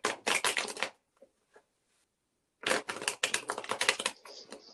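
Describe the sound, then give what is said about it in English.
A deck of cards being shuffled: a dense, crisp burst of rapid flutter, a brief pause with a couple of soft taps, then a second longer riffle fading into a light rustle. “I'm just gonna shuffle while you think.”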